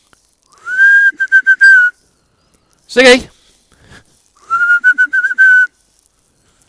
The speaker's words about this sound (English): I'm to whistle him back. He'll come eventually.